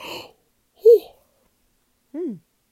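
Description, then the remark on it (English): Quiet vocal sounds: a couple of short breathy murmurs, then a drawn-out voiced yawn whose pitch slides downward before trailing off. No clear words are spoken. “So, I'll let you guys go before I yawn again. It's happening.”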